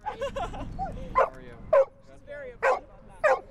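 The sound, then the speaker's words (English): A 4-year-old dog, Lucia, lets out four sharp barks at uneven intervals, fairly loud, with a brief whiny yip before them and a low murmur of background noise underneath, while passersby pet her at the Valentine's-themed Smooches for Pooches event held by Puppies at Carolina at UNC. “In preparation for February 14th, the organization Puppies at Carolina held their Valentine's-themed Smooches for Pooches event, letting passersby pet 4-year-old dog Lucia while listening to music.”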